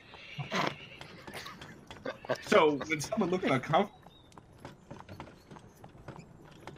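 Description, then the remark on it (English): Hooves clip-clop in a steady rhythm while a horse gives a short neigh partway through, and a person speaks over the sounds. “This horse is doing weird stuff to me.”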